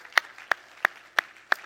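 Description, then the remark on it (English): A church audience claps hands in thanksgiving after a sermon, in a steady rhythm, five sharp unison claps about a third of a second apart, over a soft wash of scattered clapping. “Clap your hands in thanksgiving to the word of the Lord today.”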